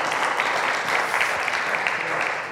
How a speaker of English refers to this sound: All right. Well, we should give him a round of applause. My goodness, he nailed it.